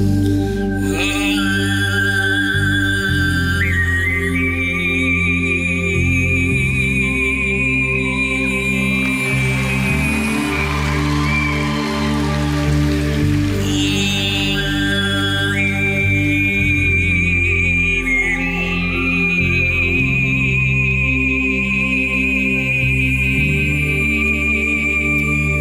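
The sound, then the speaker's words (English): Overtone throat singing: a loud, steady low drone with a clear, whistle-like high melody gliding above it, both voiced together by one singer. It continues unbroken, with no talking. “Yeah, this guy can separate his throat into the upper, middle, and bottom, and the big thing is he can sing two notes at the same time.”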